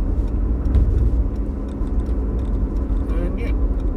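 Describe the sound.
Steady low rumble of a car interior while driving, a constant road and engine drone filling the whole moment, with people talking over it.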